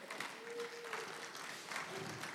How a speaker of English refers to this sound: Isn't he good? Y'all give him a big round of applause.